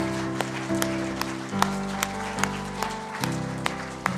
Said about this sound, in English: Why don't you give God a hand clap of praise this morning?